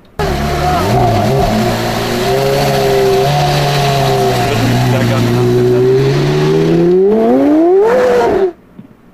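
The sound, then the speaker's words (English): A loud Porsche engine drones steadily, then revs higher with a rising whine as the car accelerates hard before the sound cuts off abruptly. “So what do you think? A Porsche. You're exactly right.”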